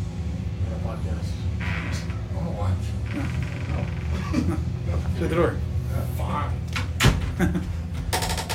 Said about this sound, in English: The door.